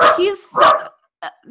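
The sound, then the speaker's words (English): A dog named Christmas, looking out the window, barks loudly in two strong, throaty bursts, followed by a short, sharper yip, with a rough growling edge and voices mixed in. “Oh, is he growling?”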